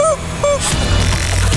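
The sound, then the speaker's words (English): Two short, squeaky squawks from Camilla, a free-range chicken, sound in quick succession, loud, followed by a burst of rushing, noisy background commotion. “You didn't talk about how Camilla's a range-free chicken.”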